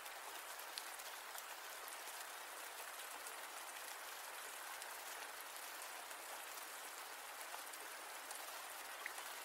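Steady rain falls throughout, a dense hiss of drops with tiny scattered pattering ticks, even in loudness and with no voices or other sounds.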